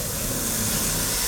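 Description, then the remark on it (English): A steady, airy hiss from a nest of vipers in a cave, continuous and unbroken for over a second, bright and sharp with a faint low rumble beneath and no voices. “They had wandered into a nest of vipers.”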